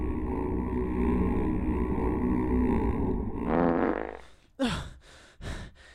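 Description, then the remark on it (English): A long, low, sputtering fart sound rumbles steadily, swells brighter near the end, then cuts off, followed by two short, sharp bursts. No one speaks. “What, the fart sound?”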